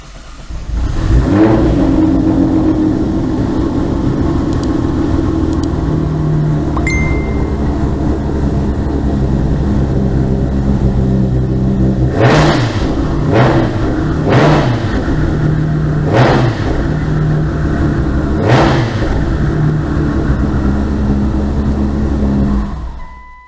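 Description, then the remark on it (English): A tuned GT-R sports car engine running on E85 fuel idles with a deep, steady rumble, then blips the throttle in several sharp revs that rise and fall back, loud with no talking. “Foot on the brake and away we go.”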